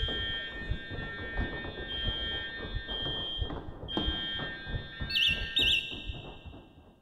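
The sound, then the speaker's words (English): A fire alarm rings during a fire drill with a steady, piercing high-pitched tone, joined by two quick warbling chirps near the end, over a busy layer of low rumbling and clatter. “Even if it was only a fire drill in the end.”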